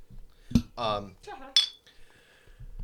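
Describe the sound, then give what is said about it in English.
Beer bottles clink together in a toast, two bright knocks with a short ringing tone after the second, while a voice murmurs briefly between them. “But now you're going to drink it for him, so cheers.”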